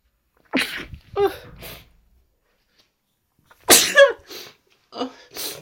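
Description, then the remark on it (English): A person sneezes loudly with sharp breathy bursts, then after a few seconds of quiet a second, stronger round of sneezing follows. No one speaks. “oh, I'm going to sneeze.”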